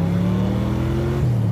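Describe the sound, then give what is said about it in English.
The Batmobile's turbine engines roar steadily and loudly as they rev up to speed, the low droning tones holding firm with a slight shift in pitch near the end, like a vehicle being gunned. No voices are heard. “Gun it. Turbine engines to speed, dude.”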